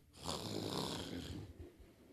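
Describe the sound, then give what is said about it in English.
A voice imitates the loud, raspy snoring growl of a seatmate on a long flight from Nigeria to America, one long rattling breath lasting about a second before trailing off into lower, rougher grunts. “Growling like a dog.”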